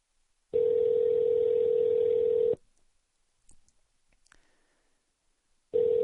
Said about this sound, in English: Uh-oh, I don't like that. Sounds like a voicemail ring. Did he really send this to voicemail?